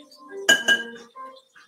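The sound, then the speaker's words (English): Two sharp metallic clinks in quick succession as a slotted spoon taps against a plate while serving stuffed olives onto it, with faint voice murmurs and quieter tonal ringing before and after. “I have a slotted spoon so I don't get all the juice from the olives as well.”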